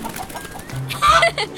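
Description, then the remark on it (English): A Rhode Island Red rooster named Texas Red, carried in a crate on a train to the state fair, gives a couple of short, throaty clucks, loud and a bit raspy, with a faint background hum and no talking. “He's a breed called Rhode Island Red.”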